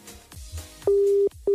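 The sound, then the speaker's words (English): A loud, steady electronic telephone tone sounds in long pulses, one held for nearly half a second and another starting just after a short gap, following a quiet, murmuring background. “Is your phone ringing? You gotta answer.”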